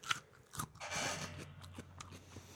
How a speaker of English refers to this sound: How about I take a bite of this radish on air? Ready? Okay.